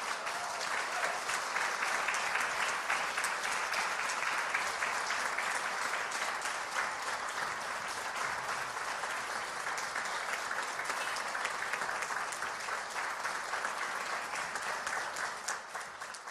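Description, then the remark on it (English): A crowd applauds steadily for about sixteen seconds as a round of thanks for a woman coming back up, a dense, even wash of many hands clapping that stays loud throughout before easing slightly at the very end. “will you just give her a round of applause and say thank you?”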